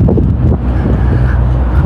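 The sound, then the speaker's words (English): A car engine rumbles loudly, a steady low roar with some wind-like rush, holding level for the whole two seconds without fading. No one speaks. “Gee, those two engines sound exactly the same. What if it's the same kind of car?”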